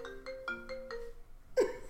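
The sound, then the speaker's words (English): A phone ringtone for an incoming call plays a quick melodic run of five bright, evenly spaced notes with sustained tones underneath, then a louder burst near the end, with no talking. “Oh, they're calling me back.”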